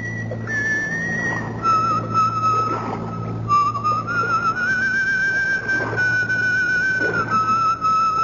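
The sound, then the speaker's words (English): A pipe-smoking woman with a cutlass at her belt whistles a slow, wavering tune in long sustained notes, clear, over a steady low hum, with no talking. “A whistling, pipe-smoking lady with a cutlass at her belt.”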